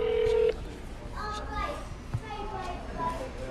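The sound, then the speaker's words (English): A short, steady electronic phone tone sounds for about half a second at the start as a prank phone call is placed, then gives way to children's voices chattering in the background. “Let's call Abigail real quick. All right, calling her right quick.”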